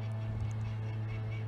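A bird honks, goose-like and fairly quiet, over the steady low engine drone of a tractor that runs through the whole short moment, with no talking.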